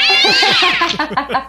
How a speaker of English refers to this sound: sometimes they meow at the door because they want to be allowed to see everything